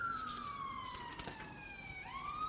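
An emergency vehicle siren wails outside, its tone sliding slowly downward and then starting to rise again, steady and fairly faint, ending with a brief sharp knock.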